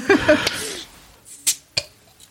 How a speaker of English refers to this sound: I can tell you about Krambeer, but I can also do more than that, which is to actually open a Krambeer for you to taste it.